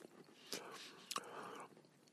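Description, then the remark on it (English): Quiet crunching as someone chews a crunchy cookie, with two sharper crackling bites standing out over a soft, breathy mouth noise. “They're really crunchy and not particularly flavorful at this point, but we'll see what happens.”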